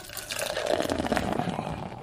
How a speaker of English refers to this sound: You know, maybe you're right. I'll just pour them all out onto the floor.